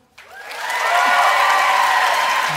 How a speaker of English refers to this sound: All right, so now you guys are just going to vote based on applause. Here we go.